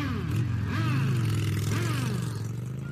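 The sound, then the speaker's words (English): Several motorcycle engines rev and rumble outside a biker bar in Sturgis, South Dakota, their throttles rising and falling in overlapping bursts of loud, throaty roaring that fill the whole stretch without pause. “How about outside this biker bar in Sturgis, South Dakota, what they think of the new, well-balanced Equilibrium cigars?”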